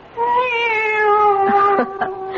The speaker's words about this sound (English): Oh, no, no. It's the cat. She's back.